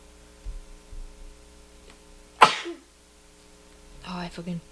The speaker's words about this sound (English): Bless you.